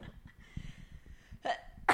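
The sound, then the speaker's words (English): A person sneezes: a short, sharp burst of breath, followed moments later by the start of another quick explosive sound, with no talking. “Bless you.”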